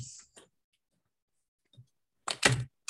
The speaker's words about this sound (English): And I'm going to go ahead and shuffle the cards. They're face down.